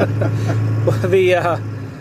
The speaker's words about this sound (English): We're in my car, and we're actually just driving around. Those of you who are familiar, we're just kind of driving around Babbler State Park